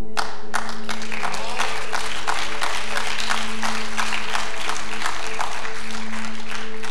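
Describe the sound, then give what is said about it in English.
An audience breaks into sustained applause after the line 'as for me and my house, we will serve the Lord', many hands clapping in a dense, steady patter at a consistent volume, with a low steady hum running beneath throughout. “And I have to admit, that's a lot easier to amen and clap to than it is to show up week after week and be faithful in the little things and to serve God and worship him.”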